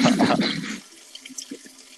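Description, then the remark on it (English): A steady stream of urination splashes loudly for under a second, then cuts off, leaving a few faint trickles and drips. No one speaks. “That sounds like a steady stream.”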